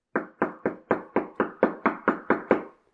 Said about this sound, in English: And so he doesn't get up because it's his partner out there knocking on the door. He gets up because his partner won't quit knocking on the door.